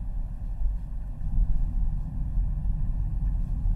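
A steady, heavy low rumble of a new Land Rover Defender's engine and road noise droning continuously during a test drive, fairly loud, with no voices.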